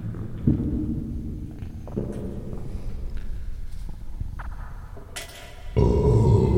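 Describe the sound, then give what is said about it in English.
A few loud, exaggerated throat gulps made on purpose as the first swallow of the day, deep and gurgling, come in separate bursts with short pauses between them, ending with a heavier, longer swallow. No one speaks. “How do you get the big gulp sound?”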